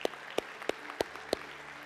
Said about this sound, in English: I know you're not clapping for me. I know you're clapping for what God is doing through me, okay?